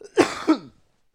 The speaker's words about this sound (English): That was a weed cough. But. That was coronavirus.